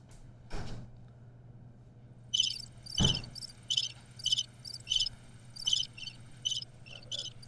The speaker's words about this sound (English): I have this crickets noise.